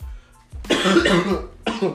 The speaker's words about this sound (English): Sorry, guys, I got a cough.